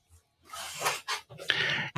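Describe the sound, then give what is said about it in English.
A person growls and snarls in imitation of a character snarling at a dog boy, a harsh raspy burst followed by a couple of shorter rough snarls, fairly loud. “He snarls at the dog boy.”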